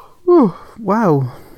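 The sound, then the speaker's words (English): A voiced yawn: a short gliding groan that drops in pitch, followed after a brief pause by a longer, wavering exhale that sinks lower, fairly loud and without words. “Two yawns in like the space of like 5 minutes.”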